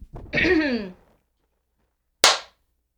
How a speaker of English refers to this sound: Sorry, that was... Kicking off with a little gas out the mouth action. A little gas out the mouth.